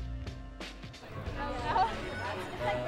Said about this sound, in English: There's a crowd gathering for a party on the lawn of the Kansas City Museum in the historic Northeast. They're here to get a sneak peek of the newly restored Corinthian Hall.